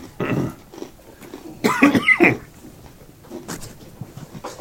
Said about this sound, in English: I look at Tennessee. I clear my throat loudly.